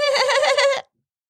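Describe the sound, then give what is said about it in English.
A person lets out a single loud goat-like bleat, a quavering nasal tone lasting under a second before cutting off into silence. “Are you a goat?”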